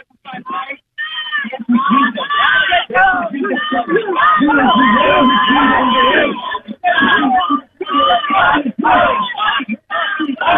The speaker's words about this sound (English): I just want to hear the chanting. Can you hold your phone up?